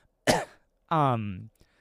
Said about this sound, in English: that was a weird cough. That sounded like I was trying to adjust, but like broke my back.